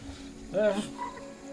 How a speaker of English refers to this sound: I say, that's a sort of a large toad.